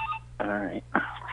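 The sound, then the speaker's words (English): A hotel room telephone rings with two electronic tone bursts, the second following shortly after the first, over a steady low hum. “Why is my hotel phone ringing?”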